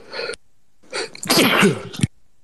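A single loud sneeze: a short sharp intake of breath, a brief pause, then a forceful burst that cuts off abruptly.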